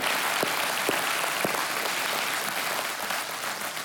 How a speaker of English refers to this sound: In fact, why don't you clap for everybody who's watching online as well? That's it.